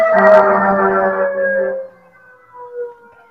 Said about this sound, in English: Sorry, I just have an ambulance going by.